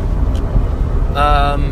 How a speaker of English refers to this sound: And like I said, I'm recording this in my car, so if you hear any funky noises, that's probably my piece of shit car. See, it's got a bad wheel bearing.